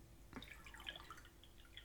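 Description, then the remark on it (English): Water pours into a mint mug, filled to drink from, in a quiet trickle, with small bright splashes and drips scattered across a couple of seconds. No one speaks. “I'm just gonna fill this up with water and then drink from it.”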